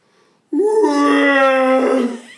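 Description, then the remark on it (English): A voice does a Chewbacca impression with one loud, sustained moaning howl, about two seconds long, holding a fairly steady pitch before trailing off. No words are spoken. “That's your Chewbacca impression.”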